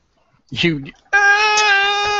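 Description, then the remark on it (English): A voice imitates a struggling toddler: a short strained grunt, then a long, loud, steady whining cry held for over a second. “I struggle like a toddler.”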